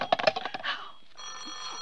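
A telephone bell rings for an incoming call in a quick, rattling burst of strikes that fades out, followed after a short pause by a steady, even electronic hum-like tone.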